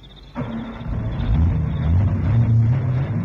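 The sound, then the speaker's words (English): A car engine catches abruptly after a brief quiet moment, then settles into a steady, loud low rumble that rises and wavers in pitch as it revs and idles, with no voices. “Starts like a bird.”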